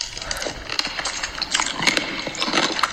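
Wet, crunchy chomping on a pickle by a woman, a steady run of crackling bites and squelches over three seconds with a slightly echoey quality from her microphone, no voices.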